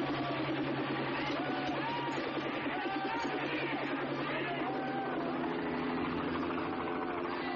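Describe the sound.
A steady, droning helicopter engine hum with a low, even rumble that holds constant throughout, while indistinct voices murmur underneath.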